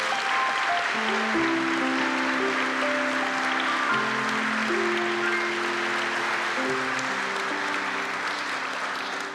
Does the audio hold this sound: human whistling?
no